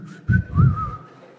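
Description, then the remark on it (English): A person whistles a short, wavering tune, a single steady tone gliding up and down for about a second, with a couple of low muffled thumps underneath. “You early in the morning, coming up whistling in the morning.”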